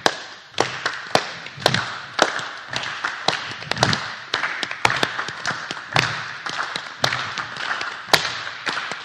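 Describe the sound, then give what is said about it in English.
Sharp hand claps ring out in loose, improvised rhythmic patterns over a steady bed of soft, low foot taps, with several people apparently clapping at once and no one speaking. “Now keep your feet going just like they are. And then clap anything that comes to you as a little rhythm.”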